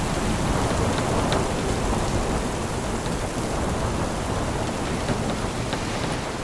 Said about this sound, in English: As night falls, the storm gets stronger. Sails are taken in to stop the ship being pushed over onto its side. Shortly after midnight, when a new watch comes on duty, the ship heels to 18 degrees. She's built to withstand a 21-degree heel.